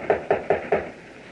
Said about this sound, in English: Now, shall I knock? Yes. Is there a bell? No. I'll knock again. Very well.